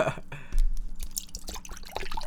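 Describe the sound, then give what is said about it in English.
Lemon go-go tea pours into a cup, a brief stream of splashing, trickling liquid with little drips and gurgles lasting a couple of seconds, with no talking over it. “Sorry to interrupt, but I'm gonna pour myself a tea.”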